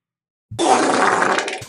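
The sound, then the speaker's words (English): A loud, wet, sputtering fart, recorded with a microphone held to the buttocks, lasting about a second, with a crackly, bubbly texture that starts abruptly after silence and trails off at the end. “My God, it's so wet.”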